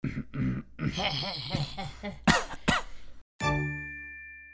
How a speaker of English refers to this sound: get some coughing out.